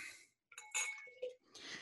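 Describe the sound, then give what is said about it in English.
A sharp glass clink with a bright ringing tone, a second small clink, then a steady hissing, fizzy pour of beer from a bottle into a glass for a beer review. “The pour.”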